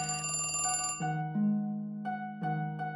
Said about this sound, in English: So the night before Thanksgiving, I'm sound asleep in the bed, and about 3 a.m, that phone starts ringing. And that phone alone. So the antique phone in the bathroom starts ringing.